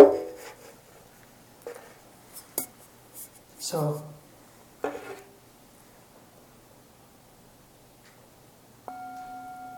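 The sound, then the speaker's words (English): Near the end a bell is struck once and rings with a clear, steady tone. Before it come a voice and a few scattered knocks and handling noises. “that's a bell.”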